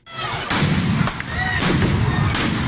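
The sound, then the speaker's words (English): Police stun grenades go off at an anti-racism street protest over the killing of George Floyd in Seattle, used to disperse crowds throwing stones and bottles: four or five sharp, loud bangs at irregular intervals, cutting through a constant roar of crowd noise with shouting voices. “Police in Seattle used stun grenades to disperse crowds who threw stones, bottles and other objects.”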